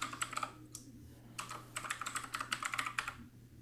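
Rapid clacking of a mechanical keyboard, bursts of sharp keystrokes in quick uneven runs with a brief pause midway, fairly quiet over a low steady hum.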